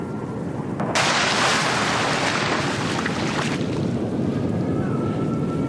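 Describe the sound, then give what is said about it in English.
A sudden, loud gust of wind sweeps in over open water during a lightning storm, flipping a raft over, roaring for a few seconds before easing back into a steady blustery hiss with waves washing beneath. “And with a huge gust of wind, the raft had flipped over.”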